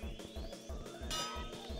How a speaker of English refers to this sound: Okay, so I have to do this to make aluminum plates. All right. Hey guys, watch me hammer some stuff.